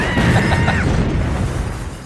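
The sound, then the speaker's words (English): A loud, sustained explosive roar with rumbling low end and crackling debris, fading slightly over two seconds, like a house blowing apart. “But the Moon Knights, they were in the kitchen, so you assume they really got hurt in that explosion.”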